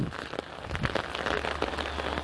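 Steady rain pattering on a street, a dense continuous hiss of drops with a low rumble underneath, even throughout with no voices; so much rain that a little river of water runs down the street.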